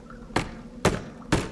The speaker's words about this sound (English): So, confused and bloated, we knocked on the door. No answer, boss. Maybe we should knock louder. Yes, good idea. And so, I knocked again.